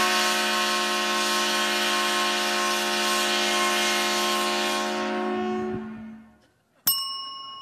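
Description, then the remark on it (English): A loud, sustained 130-decibel train horn blares for about six seconds with a rich, brassy tone, then trails off, as sounded each time the Purdue football team scores a touchdown. A single bright ding rings out shortly after. “You'll hear this 130 decibel sound every time this train-themed Big Ten team from Indiana scores a touchdown.”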